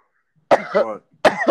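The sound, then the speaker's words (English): A person mimics a cough: two sharp, harsh bursts, the first rough and drawn out, the second starting after a short pause and cut off. “This bitch coughed on my back.”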